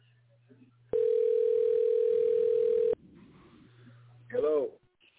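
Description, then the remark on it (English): A single loud, steady telephone ringing tone sounds for about two seconds, then cuts off, with faint voices murmuring underneath and a brief spoken sound right after. “Yeah, I tried to, but you're not answering the phone. Let me try it again.”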